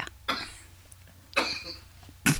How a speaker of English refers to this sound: Can you ask him to cough a little bit louder? The microphone is barely picking it up.